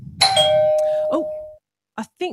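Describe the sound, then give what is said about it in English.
A doorbell chimes as somebody arrives at the door for church, with bright, overlapping ringing tones that sustain and slowly fade over about a second, followed by a couple of short vocal sounds. “I think somebody's at the door for church.”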